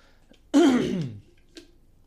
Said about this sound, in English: I hope me turning away when I clear my throat is enough, man.